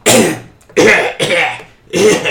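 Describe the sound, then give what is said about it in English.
A voice imitates the weak, raspy coughs of a wounded, dying man: four short, breathy bursts with brief gaps between them, fairly loud, with no other sounds. “He kind of coughs a few times and like blood is kind of trickling out of his mouth.”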